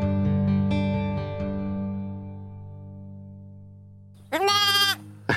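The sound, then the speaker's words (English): A sustained ringing musical tone slowly fades, then a single loud Jacob sheep bleat cuts in near the end, wavering briefly before stopping. “Well, these are Jacob's sheep, and they're really special.”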